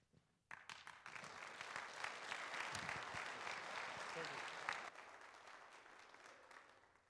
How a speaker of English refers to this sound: It's nice to get the applause before I speak, because afterwards, you never know.